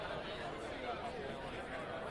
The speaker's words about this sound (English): The sky just darkened above RJ and Shelley's lemonade stand. Business is booming as usual. A crowd has formed.